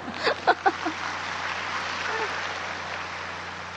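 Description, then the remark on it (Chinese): An audience applauds with steady, dense clapping that fills the whole clip at an even level, with a few brief voices or cheers rising out of it near the start. “我讲两句台语而已，大家都鼓掌了，讲了半天经，没有人鼓掌。”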